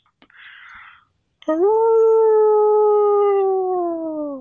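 A single wolf lets out a long, loud, sustained howl that holds a steady pitch and sinks slightly at the end, preceded by a brief breathy rush of noise.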